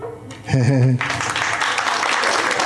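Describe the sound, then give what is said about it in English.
A brief voiced sound, then a steady patter of polite golf applause that carries on evenly at moderate volume until the end. “Followed by polite golf applause.”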